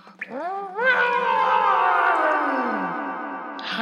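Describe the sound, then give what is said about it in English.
A child's voice imitates a T-Rex roar into a cave: after a short rising bark, one long, loud, growling roar with rich harmonics sustains for about three seconds, carrying an echoing tail as it fades. “Okay, I'm gonna roar like a T-Rex.”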